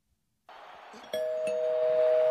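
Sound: doorbell ding-dong chime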